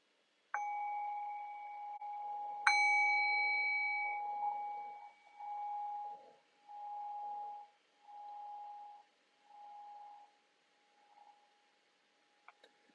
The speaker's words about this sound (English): So I'll just ring the bell and I'll guide us for just a few moments.